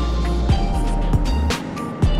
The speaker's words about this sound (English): Why do I always get stuck behind a dump truck going 20 miles an hour?